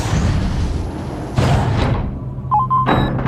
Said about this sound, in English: Did he just lock the door? So yes, the mayor's assistant locks the door and runs out of there.